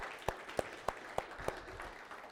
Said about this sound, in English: Will you join me as we give God a round of applause for their efforts this morning?